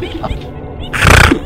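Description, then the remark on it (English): A voice imitates a pig snorting: one loud, raspy, nasal burst lasting under half a second, with a rattling, grunting texture after a brief quieter lead-in. “Ooh, I even snore like one.”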